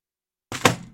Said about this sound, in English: I gotta stop doing that. Keep bumping the keyboard. It's like half off the desk. Just so I could fit my laptop up here.